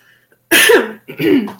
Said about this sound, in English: And I'm burping like crazy. So they're changing up the energy.